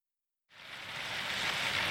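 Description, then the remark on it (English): After a moment of silence, a steady hiss of early morning rain fades in and holds, a dense even wash of falling drops with no voices. “The next day, their mother is alone in the early morning rain.”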